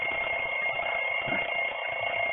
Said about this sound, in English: There we go, it's not opening now. We have to ring a bell to Jibreel so he can open it. Hold on. Hey, Jibreel, come on, open it.